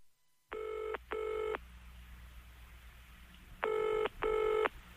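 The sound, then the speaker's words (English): A telephone ringing tone heard down the line: two double buzzes, each pair of short rings separated by a long pause, loud and clear over a faint steady hum, with no talking. “bear with, dear listener, I've just got a phone call to make.”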